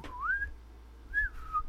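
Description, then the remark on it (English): A short two-part attention-getting whistle: a quick upward-sliding note, a brief pause, then a higher note that dips down. Clear and moderately quiet, with no talking. “Anybody who's ever played a Splinter Cell game will understand that whistle.”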